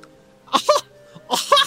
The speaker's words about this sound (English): And … is just coughing